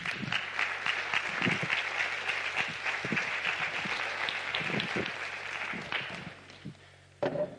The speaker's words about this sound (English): And so I'm going to invite her to join me on stage right now, if you want to give her a round of applause.